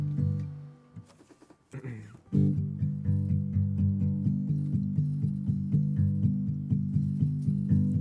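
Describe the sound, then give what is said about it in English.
Acoustic guitar strumming in a steady, bouncy rhythm, fairly loud, after a brief hesitant start with a short pause and some scraping, with no singing yet; the opening of an original acoustic song performed during a radio appearance in Santa Cruz. “the original acoustic version of it from a radio appearance in Santa Cruz on K-Pig is actually the best version, so here's that”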